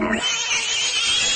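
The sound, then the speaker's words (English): A pig squeals shrilly and without a break before slaughter, a loud, harsh, high-pitched scream held steady for a second and a half, with no voices. “And didn't you always wonder what cows sounded like right before they got to slaughter? Or pigs?”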